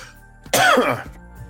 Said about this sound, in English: I got to cough for a second. Let me hit my cough button.